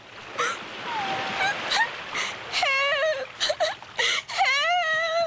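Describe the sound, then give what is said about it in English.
A woman wails and cries in wavering, drawn-out moans that rise and fall in pitch, broken by short gasps, over a steady background hiss like surf. “Boy, you're crying.”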